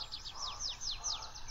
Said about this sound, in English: I am Mr. Hyla Versicolor, I'd have you know. See how rough and warty my back is? That is a sign of good family among toads. Watch me puff out my throat like a great white bubble as I whistle my drit, drit.